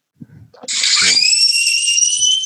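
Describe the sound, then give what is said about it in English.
A loud, piercing scream from the 2010 horror film The Crazies that bursts in after a few brief low murmurs and holds a steady, shrill pitch without letting up. “That's a very loud scream, isn't it?”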